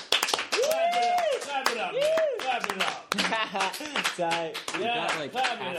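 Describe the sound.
A group of guests at a gathering clap steadily for several seconds, the claps dense and irregular, while voices whoop and cheer loudly over the applause.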